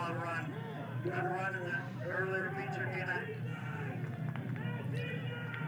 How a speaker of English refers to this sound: Fans are cheering for TJ and jeering at Jeff Scofield. So you can see who the fans like at Auburndale.